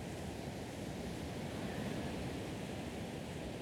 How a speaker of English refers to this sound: On a recording, the waves might seem harmless, but in fact, they are deadly. They could easily crush you.